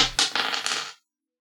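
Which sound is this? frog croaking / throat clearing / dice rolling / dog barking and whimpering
dice rolling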